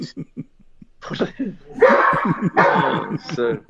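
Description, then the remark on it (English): A boxer dog barks and yelps in a quick series of sharp bursts, growing louder and more insistent, with people talking over the noise. “Even the dog's complaining.”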